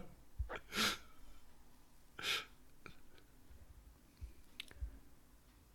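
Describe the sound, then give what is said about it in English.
Two sharp, hissy sneezes about a second and a half apart, with faint breaths and small clicks in the quiet between them and no talking. “Still sneezing, Gesundheit.”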